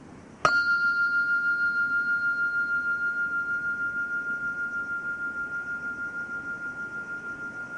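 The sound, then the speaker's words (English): A single meditation bell is struck and rings out with a clear, steady high tone that slowly fades with a gentle pulsing shimmer over several seconds, alone with no talking. “Notice the difference between connecting your attention to the bell and sustaining your attention on the ringing of the sound.”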